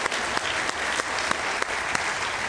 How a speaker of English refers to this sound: How about a big round of applause for... Thank you.